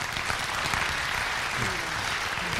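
church audience applauding

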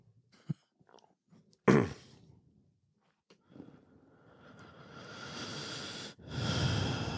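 deep breathing

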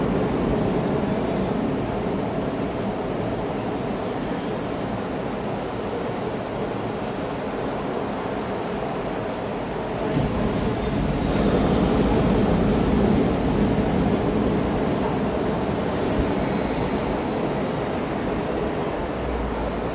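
ocean waves

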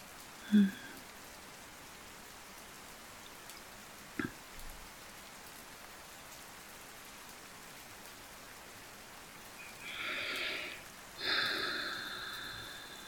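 rain pattering against windows

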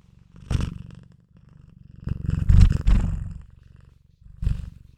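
cat purring

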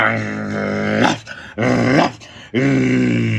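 wolf growling

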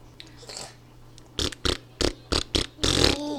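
blowing bubbles

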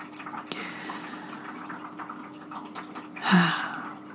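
running water

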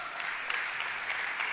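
audience clapping

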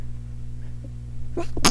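sneeze

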